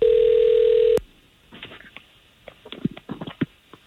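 A phone line ringing as morning show hosts of radio station K92.3 call a man's cell phone: one loud, steady ring tone lasting about a second, then cut off abruptly as the call connects, followed by faint, muffled voices on the line.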